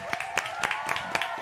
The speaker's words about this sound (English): Hey, round of applause to …, man. Showing love.